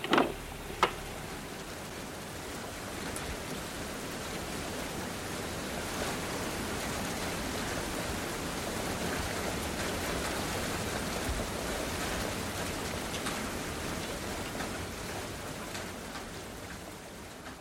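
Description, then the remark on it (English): Steady rain falls outdoors, a dense, even hiss of countless drops pattering on surfaces, with a couple of sharper knocks near the start and no voices. “So it is with the blind person coming out of his house and into the rain.”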